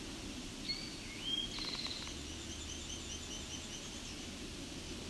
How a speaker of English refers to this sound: So at the distance, that long warble likely to be a black and white warbler.